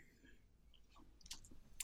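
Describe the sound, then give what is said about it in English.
Small plastic dice rattle and click faintly as they are gathered up and put back, with a couple of sharper taps near the end. “She puts her dice back like Kimberly does.”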